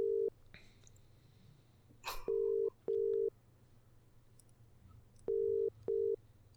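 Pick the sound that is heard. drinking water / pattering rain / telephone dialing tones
telephone dialing tones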